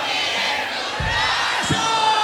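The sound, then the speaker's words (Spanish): A traditional Mexican grito rings out as a loud, sustained yell over a dense crowd roar, with a couple of low thumps partway through; no clear speech. “Y el pinche grito mexicano.”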